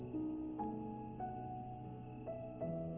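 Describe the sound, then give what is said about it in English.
A steady, high-pitched chorus of crickets trills without pause, even in loudness, over soft low tones that shift pitch every so often. “Let's take a minute to pay attention for once to the crickets. Just listen to them.”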